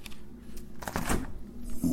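A fridge door is pulled open, making a short burst of rustling, rattling noise midway through, with a steady low hum running underneath the whole time.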